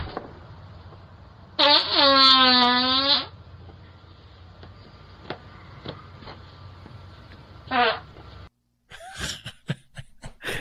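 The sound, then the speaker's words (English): A fart recorded by a doorbell camera is played back: a loud, drawn-out buzzy fart rips for over a second, followed several seconds later by a much shorter one over a steady low hum, then a few scattered clicks and rustles. “What a wonderful fart that was.”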